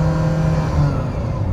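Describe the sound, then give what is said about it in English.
A Ferrari Mondial T engine hums steadily from inside the moving car, a loud, continuous low drone with road and wind noise and no talking. “This car begs to be driven.”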